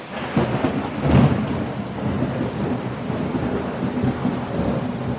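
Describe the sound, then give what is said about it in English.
Heavy rain pours steadily in a dense, hissing wash while thunder rumbles low underneath, swelling into a louder roll about a second in. No voices, just the storm. “And worse, climate change has intensified the rainy season, and more rain has meant more floods.”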